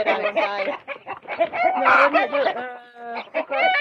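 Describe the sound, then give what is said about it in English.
Several fairly large, mellow birds cluck and chatter in a steady, overlapping stream of short throaty calls with a few longer drawn-out notes, fairly loud throughout. “They're pretty good size birds. Very mellow.”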